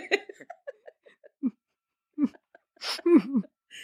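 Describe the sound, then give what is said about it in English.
A person vocally imitates an alligator's bellow with a string of short, breathy grunts, building to a loud, rough, drawn-out roar near the end. “You just hear a whole bunch of like, wah!”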